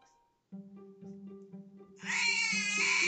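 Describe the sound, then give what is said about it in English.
A low droning, pulsing tone begins, then a loud, harsh, drawn-out cat meow cuts in over it and holds to the end, sounding strained and screechy. “Okay, only one more cat noise.”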